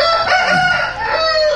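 A rooster crows loudly and close up, one drawn-out, strained cock-a-doodle-doo that fills the whole moment, with no one talking.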